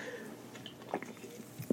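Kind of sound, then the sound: food or drink, sipping a drink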